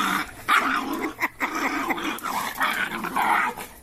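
A dog snarls and growls continuously, breaking into several sharp, loud barks over a few seconds, with no one speaking.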